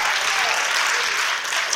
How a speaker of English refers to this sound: If you can testify, give Him a hand clap of praise. Come on. Hallelujah.